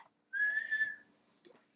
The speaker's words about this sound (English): Did you just whistle? Kinda.